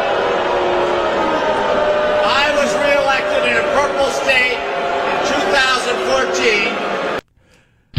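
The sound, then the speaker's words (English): A large crowd at the California Democrats' state gathering boos John Hickenlooper loudly and steadily for about seven seconds after he says socialism is not the answer, a dense roar of many voices with shouts rising through it, before cutting off abruptly to silence. “That was the state get-together among Democrats in California and booed pretty roundly for saying socialism is not the answer.”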